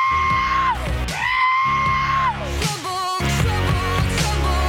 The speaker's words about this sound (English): I've only heard that song with the goats so many times. I don't know how it sounds when it's not manipulated anymore.